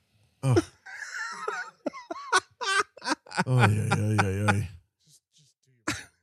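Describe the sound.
A short, close cough bursts out, followed by throaty, voiced vocal noises that could be laughter or throat clearing, and ends with another brief cough-like burst.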